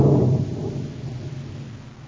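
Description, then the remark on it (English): A deep roll of thunder from an approaching storm rumbles low and heavy, loudest at first and then slowly fading away over a couple of seconds, with no voices present. “I'd like to get this job over with before that storm hits us.”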